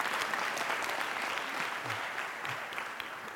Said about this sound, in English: Give me a round of applause just because. You're just dope.